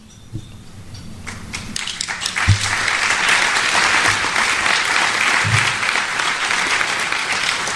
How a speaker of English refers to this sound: I pause for that applause because, you know, this is a very, very important issue that I'm passionate about.